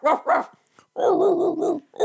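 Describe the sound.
A dog barks: two quick sharp barks, a pause, then a longer drawn-out bark with a rough, growly edge, and another bark starting at the end. No one speaks.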